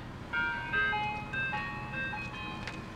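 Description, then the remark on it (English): An ice cream truck rolls by at sunset, its tinkling jingle playing a bright melody of sustained chime-like notes over the low rumble of the passing vehicle, moderately loud and steady. “There's a sunset, they're driving off, and an ice cream truck rolls by.”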